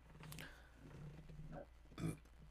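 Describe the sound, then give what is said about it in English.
A long, low, croaking burp rumbles, followed by a short, louder belch near the end, with no talking. “God, I have the fucking severe burps. Damn, I've been burping all fucking podcast long.”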